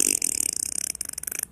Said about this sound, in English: Sounds like a diesel tank. It's fucking farting by.